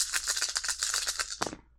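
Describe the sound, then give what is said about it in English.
A handful of dice, rolled as a dice pool for logic plus Lone Star knowledge, rattle and clatter rapidly for over a second, a dense burst of bright clicks ending in a final sharper tumble before settling into silence. “So, yeah, logic and the Lone Star. Not a bad dice pool.”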